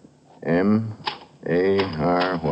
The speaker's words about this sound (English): M-A-R-Y-H-A-D... You are typing the same phrase.